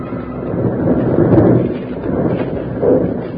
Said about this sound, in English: Jingles were trapped by one of the most deadly perils of the snow country, a snow avalanche started by the two bank robbers high up on the slope. As the great slide swept past the lawman, the outlaws watched it until the clouds of loose snow settled.